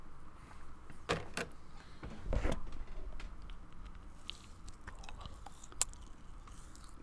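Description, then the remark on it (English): A quiet bite into a soft cookie, a couple of sharp mouth clicks and then a muffled bite, followed by soft, irregular chewing with only faint crunch. “They're very soft cookies.”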